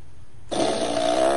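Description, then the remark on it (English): After a brief silence, a fart machine used for a Guess What game lets out one sustained, raspy, buzzing fart that holds steady in pitch and loudness for nearly a second, with no talking. “Michael's ready for you to do the Guess What with the fart machine.”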